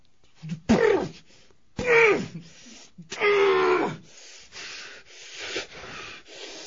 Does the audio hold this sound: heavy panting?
yes